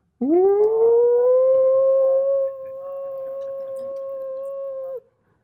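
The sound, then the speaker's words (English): A voice imitates a car engine: a loud, sustained droning tone that swoops up at the start, then holds a steady pitch for about four seconds, easing slightly in volume midway before stopping. “can I make some funny sound? You don't mind? I call in a car engine sound.”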